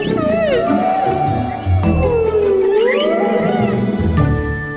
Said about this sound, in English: humpback whales are the singing stars of the sea. Their songs can last up to 20 minutes. Scientists think that only boy whales sing, maybe because they're trying to get the attention of girl whales. So maybe whale songs are love songs.